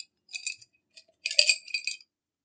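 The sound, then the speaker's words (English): Five small hard stones, three white and two red, rattle and clink together as they are shuffled inside a cup, two quick bursts of shaking with a brief pause between, fairly quiet with no voices. “So we have in the cup 3 white and 2 red. I'm gonna shuffle them up.”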